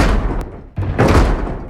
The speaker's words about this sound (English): A pounding at two large double doors stopped their bickering. Another slam and wood caved inward, revealing the business end of a mighty hammer.